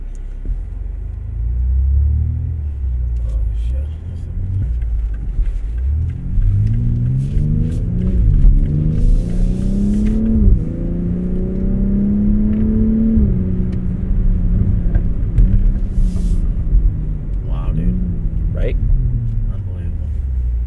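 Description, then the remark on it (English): A BMW M5 sports car engine roars, its pitch climbing steadily as it accelerates hard through several gear changes, dropping briefly between each rise before pulling strongly again. “The M5... is faster than a Lamborghini Huracan Performante, or the M5 competition is, and beats most supercars around the track.”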